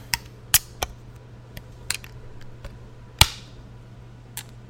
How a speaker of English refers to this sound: Why do all their beers splash everywhere when I open them?